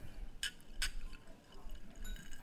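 Two bright glass clinks ring out in quick succession as glasses are raised and touched together in a toast at a dinner, over a low murmuring background.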